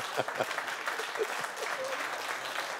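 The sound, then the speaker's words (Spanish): An audience applauds, a dense, steady patter of many hands clapping at an even level for a few seconds, with no one speaking over it. “La gloria y los aplausos en un mensaje son altos cuando hablamos de milagros.”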